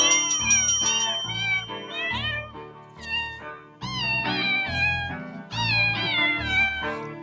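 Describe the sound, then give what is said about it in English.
Cat meows pitched and sequenced into a melody, the Christmas carol "Angels We Have Heard on High" played with many rapid, rhythmic meows over a steady backing, loud with no talking. “Can you believe that there's actual music videos with cats singing this?”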